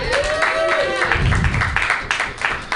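A crowd claps steadily in a dense, continuous wash of applause, with a rising whoop or cheer near the start and some voices mixed in.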